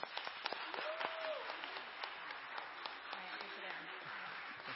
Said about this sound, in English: Awesome job. Let's clap for these two.